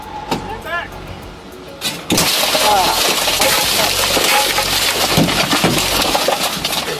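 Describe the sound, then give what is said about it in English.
After a few seconds of muffled voices, a truck window is suddenly smashed with a loud crash, followed by several seconds of crunching, tinkling glass fragments scattering. “I don't want to break the glass.”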